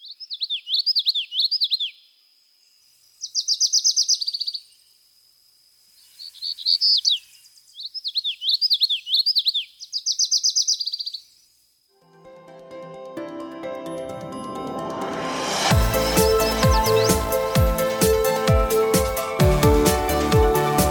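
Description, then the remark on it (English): A single bird sings clear, high warbling phrases in short bursts separated by brief pauses, bright, before swelling music fades in and takes over. “I hope you feel the same way, but if you can't get outside right this instant, I'll leave you with some lovely bird song to close out this episode.”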